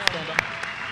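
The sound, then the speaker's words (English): An audience at an evening fundraising event applauds in a steady, dense wash of clapping, with a few sharper claps popping out above it during a brief stretch. “Give John appreciate a big it, round guys. Of applause.”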